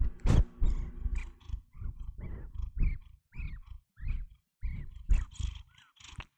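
A cat purring in a steady rhythm, low rumbling pulses rising and falling about once every half second, fairly loud and with no voices over it.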